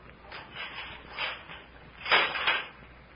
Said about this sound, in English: And then the door was unchained and opened.